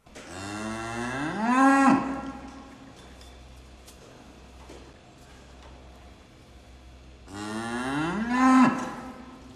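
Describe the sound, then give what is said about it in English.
Two loud, drawn-out moos from Luma, a cow in a documentary staring directly into the camera, each rising into a strained bellow, separated by several seconds of quiet low rumbling background. “You got to think, this is a cow staring directly into the camera. I think I can speak cow language for her bellows here.”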